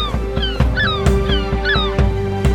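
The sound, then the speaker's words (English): A bird honks over and over in quick succession, loud, each nasal call paired with a sharp thump in a steady bouncing rhythm. “Give me my other shoe back! You bird.”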